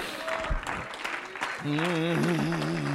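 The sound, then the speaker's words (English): At a revival service, a crowd claps hands on the preacher's call in a loud, steady wash of overlapping claps, and partway through a strong, wavering voice joins in over the applause. “Clap your hands.”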